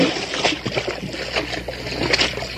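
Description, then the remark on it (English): Water churns and splashes as a man plunges into a river, a steady run of sloshing bursts lasting a couple of seconds with no voices. “The next instant, the native plunges into the water.”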